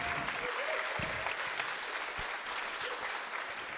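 An audience applauds steadily, a dense wash of many hands clapping at an even level for several seconds, fairly close and with no voices standing out.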